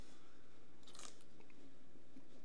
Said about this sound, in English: That was a good slurp. That's a quality slurp. You gotta slurp.